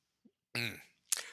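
A single harsh cough bursts out with a rough, breathy tail, followed by a short sharp exhale or second small cough, with a faint throat sound just before.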